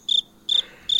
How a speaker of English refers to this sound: Cricket, cricket. Awkward silence.